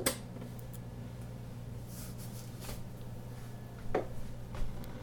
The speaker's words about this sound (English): And you can hear the coffee maker start up.